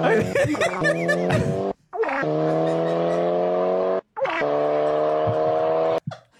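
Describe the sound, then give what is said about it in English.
A Volkswagen Golf car engine pulls away in three loud, buzzy revving bursts, each cut by a short gap like a gear change. The steady droning tone sounds almost flatulent, with brief laughter at the start. “Dude, so it's just this like golf driving away, and it's just this.”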